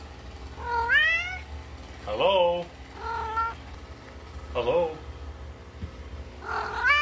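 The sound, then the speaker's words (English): A cat meows several times, each meow answering a person who says hello in a questioning tone, creating a back-and-forth exchange over a quiet background hum. “I trained Sid, or Sid trained me, that he wanted to meow at me whenever I said hello to him”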